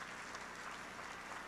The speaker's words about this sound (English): Come on, won't you give God a hand clap of praise in the house?